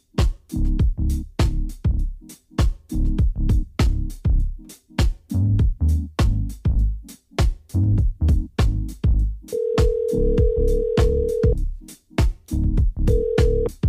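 A rapid string of electronic dialing beeps plays for several seconds as a radio host phones a guest, then a steady ringback tone sounds twice on the line, fairly loud, with no one talking.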